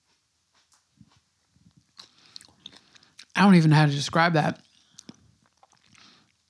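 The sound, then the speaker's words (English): Wet chewing of pickled watermelon, a soft, gummy food: scattered smacks and small crunches before and after a short spoken remark in the middle, with quiet pauses between bites. “Hold on, let me chew.”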